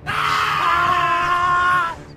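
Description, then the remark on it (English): A loud, sustained human scream, raw and anguished, the dying scream of someone gunned down in a crossfire, holding steady for nearly two seconds before cutting off abruptly, with a low rumble underneath. “And they all screamed like that when they died.”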